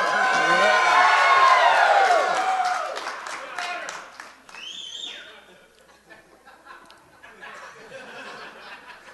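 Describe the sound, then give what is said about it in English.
A rowdy crowd of hooligans next door cheers and shouts together, many voices loud and overlapping for a couple of seconds, then the noise fades into scattered chatter with a brief high whistle-like tone. “A lot of hooligans next door.”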